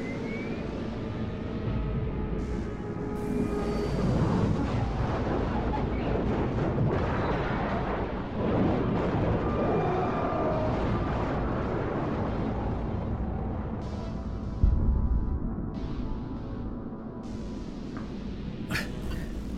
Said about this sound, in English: Biff does not see the hurtling, burning rocket ship. Like a fiery arrow, scorched across the sky, crash nearby.